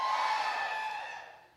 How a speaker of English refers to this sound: All right, we're going to rephrase it. Anything you want to yell will do the trick. Let's try it again. Are you with me?